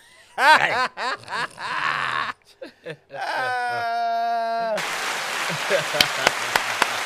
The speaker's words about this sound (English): Hand clap for that one.